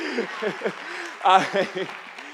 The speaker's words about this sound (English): We've been married now for 10 months, actually, tomorrow. Yeah, you can clap that. That's good.